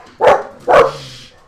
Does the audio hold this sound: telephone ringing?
no